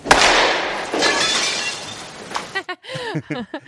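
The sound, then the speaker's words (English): Two loud crashes of breaking glass as batted baseballs go through gym windows, about a second apart, each trailing off in a bright, scattering tinkle of shards, followed by a voice speaking in short bursts. “And right now, she's in this gym, and she's just knocking the cover off the ball, going through windows.”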